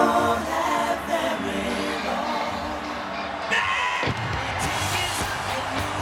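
A huge stadium crowd of Pittsburgh Steelers fans in Pittsburgh roars and cheers late in the game without letup, a dense wall of shouting voices with scattered whoops and yells rising above it, loud and steady for the whole stretch.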